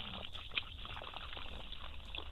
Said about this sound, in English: What's going on there? What's this? Oh, I'm getting a glass of water. I'm sorry. I really am. I'm getting a glass of water. I believe you. I could hear it.